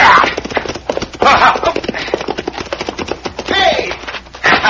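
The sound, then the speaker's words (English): The horse Diablo galloping hard and fast as its rider chases a man to rope him, a dense, steady drumming of loud hoofbeats throughout, with a few brief tonal cries mixed in. “How does it feel to be roping your horse, hombre?”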